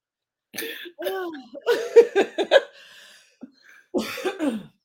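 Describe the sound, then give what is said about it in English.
Raspy smoker's cough in several harsh bursts, with throaty, rattling vocal sounds between them and a final hacking fit after a short pause. “That was a smoker's cough.”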